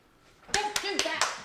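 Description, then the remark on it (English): A cat scratches at a leather chair in four quick, rasping strokes with a steady rhythm, moderately loud, with a faint voice murmuring underneath. “Sorry, the cat was scratching the leather chair.”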